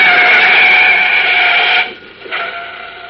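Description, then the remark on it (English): A large black sedan roars down from behind at full throttle, a loud, steady, buzzing drone that cuts out abruptly, dips for a moment, then surges back briefly before fading. No voices. “Olsen were leaving the scene of the recent subway cave-in with a shoebox full of concrete specimens, a large black sedan, throttle open, roared down on the boy reporter from behind.”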